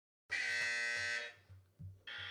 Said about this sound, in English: So each team can buzz in when you know the answer. Let's hear some buzzers.